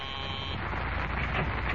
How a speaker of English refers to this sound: Hours later, just as dawn is breaking, a call buzzer summons a nurse into a private room at the city hospital.